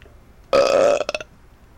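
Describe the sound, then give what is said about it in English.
A single loud belch: a sustained guttural croak of about half a second that breaks into a few short rattling bursts at the end, with no talking. “Let's get a belch for the barber.”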